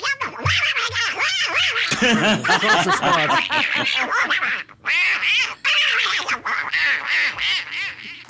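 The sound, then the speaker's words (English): A raspy Donald Duck cartoon voice quacks out rapid, garbled gibberish in nonstop loud bursts, with only a couple of brief pauses, in audio from a video Donald Trump posted as his response. “His name is Donald Duck, apparently.”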